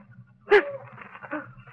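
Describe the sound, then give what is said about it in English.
Dogs tracking a person bark twice, a sharp bark followed by a softer one about a second later, over a low steady background hum with no talking. “Dogs. They got dogs after me.”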